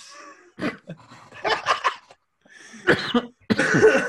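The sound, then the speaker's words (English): A person coughs several times in short, harsh bursts, with brief pauses between fits and a longer, rougher coughing spell at the end. “Where'd that cough come from?”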